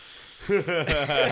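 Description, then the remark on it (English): A person imitates a breathing-exercise exhale with a steady, breathy hiss, which then blends into wavering voiced sounds over about a second, all at moderate loudness. “Dude, there was a moment while the like daughter of the water chief, I guess, where she was doing the breathing exercise, and I did it as a bit to be like.”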